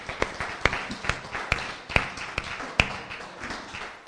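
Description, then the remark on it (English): An audience at a church service claps for the Lord in a steady rhythm, sharp unified beats about twice a second over a continuous wash of looser, scattered clapping, with no one speaking. “Let's give the Lord one more hand clap tonight.”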